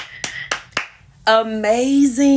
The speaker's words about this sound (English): Wait a minute. First of all, let me clap, clap, clap.